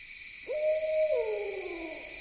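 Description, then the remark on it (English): A barred owl gives a single drawn-out hooting call that slides downward at the end, nearby at a campground as dusk falls, over a steady high buzz of insects chorusing in the background. “A barred owl sounds off nearby, against a vibrant chorus of insect song.”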